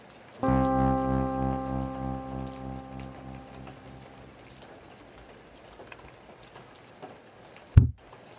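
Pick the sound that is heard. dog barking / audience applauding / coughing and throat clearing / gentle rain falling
gentle rain falling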